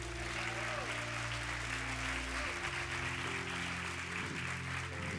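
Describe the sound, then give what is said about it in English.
An audience claps steadily for several seconds, a dense, continuous patter of many hands, with sustained low musical tones humming underneath throughout. “Let's get a better clap. We got one started.”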